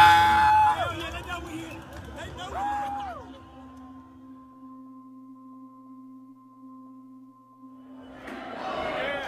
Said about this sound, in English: As the crowd grows, the mob fills the halls of the Capitol, and police struggle to gain control. The rioters splinter off into different factions throughout the building.